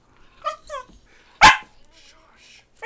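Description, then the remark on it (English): A female dog lets out one loud, sharp bark, preceded by a couple of softer high-pitched yips or whines, with quiet gaps in between and a brief sound at the end. “That dog, is he wild?”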